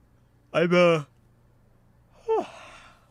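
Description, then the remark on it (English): A person yawns during a live stream, a drawn-out voiced groan followed after a pause by a shorter falling, breathy exhale, with no words spoken. “I'm off stream with the yawn is crazy.”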